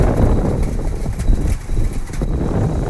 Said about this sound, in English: So I grabbed my microphone, walked outside our studio. So this is Huron County wind in the town of Goderich.